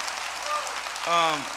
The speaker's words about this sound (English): You know, here, give that man a round of applause. Definitely.